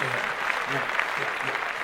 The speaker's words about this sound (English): Clap that up. For hip-hop. For hip-hop.